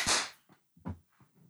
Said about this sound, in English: Oh, we should clap, too, so I can... Oh, yeah. 3, 2, 1.